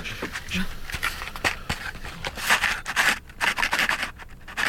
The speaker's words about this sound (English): I've put some paper clips into a little box. Here we go.